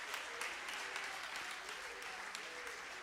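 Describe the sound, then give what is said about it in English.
An audience claps their hands together in praise in sustained, dense applause, a steady wash of many hands with no clear pauses. “Would you clap your hands and give him some praise?”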